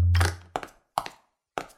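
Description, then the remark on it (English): A cell phone drops onto a hard floor: a heavy first thud, then three sharp clattering bounces spaced over about a second and a half, with no voices. “You dropped your cell phone!”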